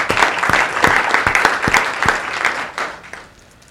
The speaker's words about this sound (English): He's also a veteran of the U.S. Army, and just give a round of applause to our panelists for being here.